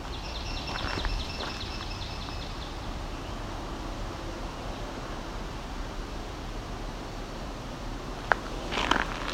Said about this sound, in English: I'm just going through a mature stand of white pine into a clearing. There's an open wetland. There's a swamp sparrow right here.